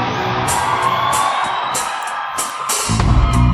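A concert crowd cheers in a frenzy, a loud, steady roar dotted with whoops, yells and sharp bursts, with a deep rumble swelling in at the end.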